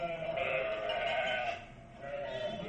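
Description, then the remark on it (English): Two drawn-out, wavering sheep bleats, the first lasting over a second and the second shorter after a brief pause, fairly loud with no speech. “How about some sheep?”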